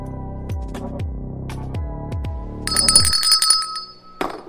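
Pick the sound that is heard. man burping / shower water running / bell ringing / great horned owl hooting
bell ringing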